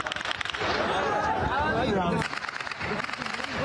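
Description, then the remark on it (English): Sharp gunshots crackle in quick, irregular bursts over a loud, chaotic crowd around a truck convoy on Al-Rashid Street, with voices shouting and clamoring throughout in a noisy outdoor scene. “in footage from Al Jazeera, you can hear gunfire”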